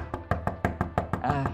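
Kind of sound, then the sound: impact, knock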